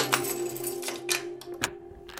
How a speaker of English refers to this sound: Well, the door sounds. That's what it was. Yeah, that was the door. Hey, that's some keys.